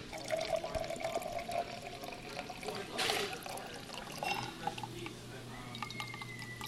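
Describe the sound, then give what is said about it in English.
A cocktail is poured carefully and steadily into a champagne flute for several seconds, a soft continuous trickle with faint clinks, fairly quiet, with a brief louder splash midway. “And once that's poured carefully into the champagne flute, we're going to top that slowly with some sparkling wine of some sort.”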